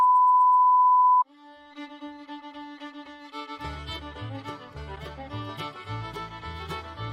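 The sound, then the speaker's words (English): A steady electronic beep sounds for about a second, then busy, fiddly quick-picked banjo music starts up in an ad for the All-Timers Comic Book Show, with a deeper bass rhythm joining a few seconds later; no one speaks. “I love that fiddly banjo music.”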